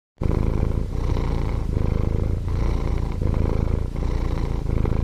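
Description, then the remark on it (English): A cat purring loud and relaxed, a steady rumbling drone that swells and dips in a slow, even rhythm with each breath, about seven cycles, with no other sounds. “Let's see if you and our listeners can tell which is the morning purr and which is the relaxed purr.”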